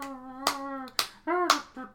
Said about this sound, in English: There's one guy clapping, and there's one guy...